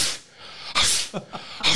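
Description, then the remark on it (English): A voice imitates a dog sneezing from smoke blown in its face: a few sharp, hissy bursts, two loud ones with smaller snorting puffs in between, and no talking. “Apparently that dog had a problem with smoke. It sneezed for like 3 hours.”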